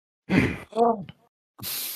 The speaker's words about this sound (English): Audible gasp. Like that's, I'm not good at that. I'm not good at that. I'm good at faking the gasps.